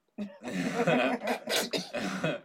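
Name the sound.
hard coughing fit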